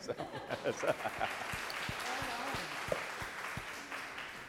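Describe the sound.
An audience claps steadily for several seconds, a dense wash of many hands with brief sharp accents, while murmured voices and a few low spoken words sit underneath.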